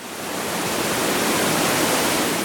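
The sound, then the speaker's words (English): A steady, roaring rush of a waterfall, where a river runs off a cliff or hill, broad and hissy, continuous and loud with no voices or other sounds. “A waterfall is when a river runs right off a cliff or a hill”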